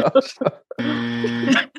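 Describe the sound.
A game buzzer is held down by a contestant during a quiz game, giving one harsh, steady, low-pitched electronic drone that lasts under a second, right after a few quick words of talk.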